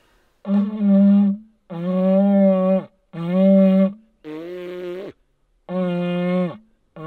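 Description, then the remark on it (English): Five buzzy, horn-like blasts of lips buzzing into the tube of an elk call, practised before using the diaphragm, each about a second long with a steady low pitch and rich harmonics, separated by short silences. “And before you ever try to do it with the diaphragm, what you wanna do is practice buzzing your lips into the tube.”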